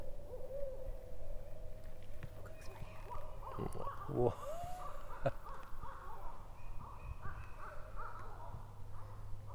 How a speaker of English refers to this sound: Those are some hungry barred owls. Or angry or happy. Yeah. Territorial. Who cooks for you?